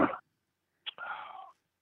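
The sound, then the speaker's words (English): A yawn comes through a phone line, band-limited and tinny: a short breathy intake, then a drawn-out voiced sigh sliding downward in pitch for about half a second, after a brief muffled burst. “No, I yawned.”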